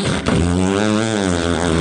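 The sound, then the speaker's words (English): A voice imitates an electric can opener with one steady, loud, buzzy hum lasting about two seconds, its pitch holding nearly level with a slight waver. “Electric can opener.”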